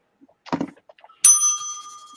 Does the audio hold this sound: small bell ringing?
yes